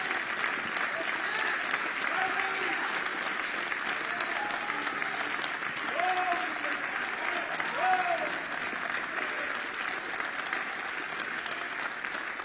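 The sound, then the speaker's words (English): A large crowd claps in praise to God steadily for about twelve seconds, a dense, sustained wash of applause with faint voices calling out underneath. “Well, give God a real good hand clap of praise.”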